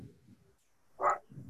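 A single sharp bark from a pet dog, thought to be Toby, rings out, standing out clearly over a low rumbling background murmur.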